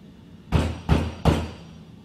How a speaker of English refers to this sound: So, I thought it was like drops of water hitting this metal lid to the basement. But I noticed each time you would knock, I would hear that little ding right there. So I wasn't sure if they're water droplets or...